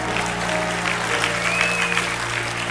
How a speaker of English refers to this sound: Give God a mighty clap and a praise and a shout. Yeah! Woo!